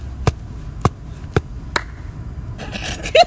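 Four sharp, evenly spaced hand claps with low thumping foot stomps beneath form a slow beat, fairly loud, followed by a brief burst of shuffling noise at the end.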